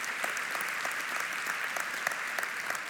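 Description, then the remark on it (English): Steady applause from an audience, a dense wash of many hands clapping at a constant level with a few sharper claps popping out, and no voices over it. “Now, some of you aren't clapping, but maybe you'll clap at this.”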